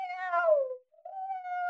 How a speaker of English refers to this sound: I've got here a little pussy cat that goes.